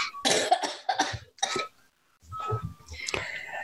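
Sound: coughing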